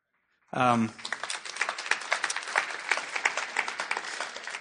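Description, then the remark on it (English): A short vocal burst gives way to audience applause, many hands clapping in a dense, crackling patter that holds steady and fairly loud until the end. “Yeah, they're giving applause to this, and this is a completely ignorant mishandling of this text.”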